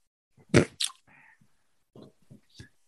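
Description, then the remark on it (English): A comedic fart sound effect: a loud, abrupt burst followed by a squeaky, wavering tail and a few softer sputters trailing off, heard alone. “I ended up saying, I enjoy a good fart joke.”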